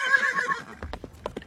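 A horse lets out a short, high, wavering whinny, followed by several sharp hoof clops on a hard surface. No one speaks.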